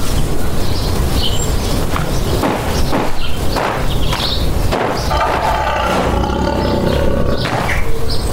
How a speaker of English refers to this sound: Lion? If you're that lion, I hate to ask for help again so soon